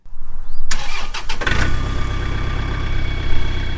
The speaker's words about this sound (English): At Willow Pond Farm in Sabattis, Jill Agnew starts up her tractor to tend to her fields that are about to be planted.